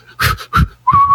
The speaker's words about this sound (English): First off, why are you breathing like that? Second off, why are you breathing so hard that you whistle?